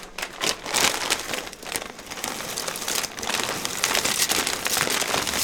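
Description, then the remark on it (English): Noodles going into a pot of boiling water: a steady, bright crackling hiss of bubbling, full of tiny pops and fizzing bursts that stay loud throughout, with no voices. “While we're talking about water and ports, go ahead and add the noodles into the boiling water.”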